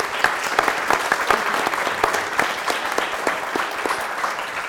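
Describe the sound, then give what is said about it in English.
A crowd breaks into steady applause for a panel of speakers, many hands clapping at once in a dense, sustained patter that stays fairly loud and even throughout, with no talking over it. “Please join me in giving a round of applause for our esteemed panelists.”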